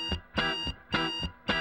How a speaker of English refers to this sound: Brendan Carter ignored his alarm clock.